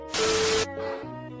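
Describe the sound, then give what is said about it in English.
A single sharp, hissing sneeze bursts out loudly for about half a second, then gives way to a low, steady hum with no talking. “Bless you.”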